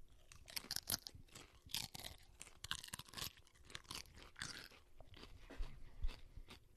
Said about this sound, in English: All right, you want to cheers these and dink, and we'll get a nice ASMR of us chip crunch. ASMR chip crunch. Cheers, bud.